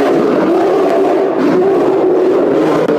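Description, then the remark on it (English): A bear that has caught fire roars and howls in pain, a loud, sustained, strained bellow that holds steady for several seconds without a break, alone with no talking. “you whip out your hand, shoot this ember flame, and this poor bear just... ignited. Hey, now we have it begins fire. To roar and howl in pain.”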